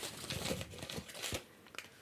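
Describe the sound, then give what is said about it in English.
Crisp crinkling of a crumpled paper slip being pulled open, a steady run of small crackles and rustles with a few sharper snaps, no voices. “Someone really crumpled this one really well.”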